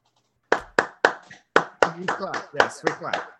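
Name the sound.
hands clapping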